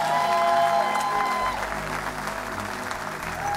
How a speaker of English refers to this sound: God bless you today and happy Mother's Day. Give kids a big clap offering.